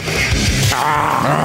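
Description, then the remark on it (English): A person imitates a lion's roar with one loud, gravelly growl that holds steady for about a second and a half. “It's hard to do a lion.”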